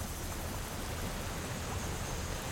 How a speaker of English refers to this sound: It's raining, too. Not a hard rain, but it still stings at this speed.